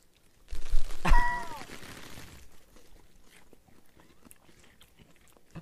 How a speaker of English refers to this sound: So you'll hear lots of eating.